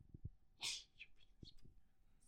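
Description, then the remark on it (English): A dog lets out a single sharp, sneezy snort, followed by a few soft snuffles and faint shuffling noises. “The dogs do fucking quite possibly anything they want.”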